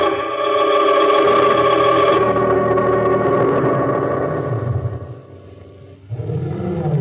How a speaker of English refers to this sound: Somewhere in the distance, a lion roared.